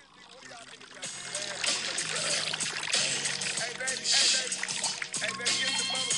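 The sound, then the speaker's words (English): Liquid pours into a cup in a steady, splashy stream for several seconds, fairly loud, with a busy wash of noise and faint voices underneath. “I guess that didn't like stand out to me, but I figured he was pouring drink in a gin in a cup.”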